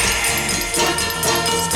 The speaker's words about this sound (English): And representing the flower people, Quasimodo on bells.